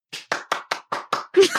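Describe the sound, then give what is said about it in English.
A quick, even run of about seven sharp hand claps, roughly five per second. The final clap is broader and overlaps a short vocal sound. “There are the claps.”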